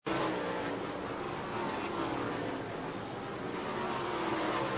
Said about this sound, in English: We haven't seen a lot of racing at Mansfield, obviously. It's new that Cody and that group out there are doing. Here was the finish from this sprint car race turn. Take a look.